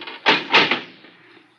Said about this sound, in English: This thing gets heavier every week. Door's not that heavy